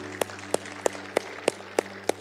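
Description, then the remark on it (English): Applause for God after a prayer, in the form of seven sharp, evenly spaced claps at a steady rhythm of roughly three per second, sounding in unison over a faint constant low hum, with no talking. “Let's give God a round of applause today, can't we?”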